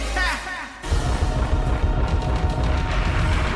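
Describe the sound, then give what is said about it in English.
A short voice-like sound gives way to a canned applause effect pressed on a soundboard: a dense, steady crackle of many hands clapping at once, loud and sustained for about three seconds. “Can we do like a soundboard clap?”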